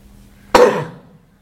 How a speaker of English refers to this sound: I'm going to sneeze.